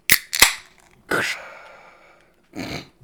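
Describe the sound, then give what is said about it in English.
A beer can being cracked open: two sharp metallic clicks, then a loud pop that trails into a fizzing hiss for about a second, followed later by a softer, duller sound. “Let's crack into it. Do it. Let's crack it.”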